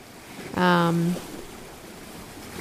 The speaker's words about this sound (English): we had another boat go by